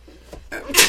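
A single sneeze: a brief breathy buildup followed by a sharp, hissy burst of air at the end, with no talking around it.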